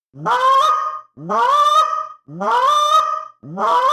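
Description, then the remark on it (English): Four drawn-out, moaning honks blown on a goose call, each note sliding upward in pitch, evenly spaced with short pauses, loud with no talking. “The moan.”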